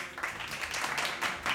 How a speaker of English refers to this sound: Did you hear that clap, too? Listen to this clap.